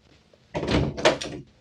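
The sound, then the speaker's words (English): A door, the first on the right at the top of the stairs, opens with a fairly loud rush of creaking and rattling noise lasting about a second, followed by quiet. “First door to the right at the top of the stairs.”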